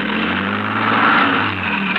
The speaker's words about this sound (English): His knuckles turned white as he clutched the wheel. He shoved the car into reverse.